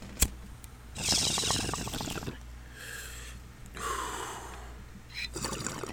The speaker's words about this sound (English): we're going to hit this purple mimosa. If you hear it bubbling or you hear me cough, grow up, be an adult. It's marijuana.